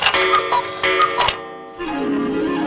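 A cuckoo clock ticks with several sharp, fairly loud clicks at an uneven pace, then the ticking stops and a sustained tonal, whistle-like sound takes over. No one speaks.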